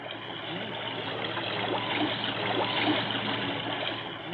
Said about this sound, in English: This is the sound of water.